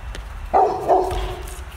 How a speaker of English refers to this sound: My dogs are barking. That's what they had to say about that.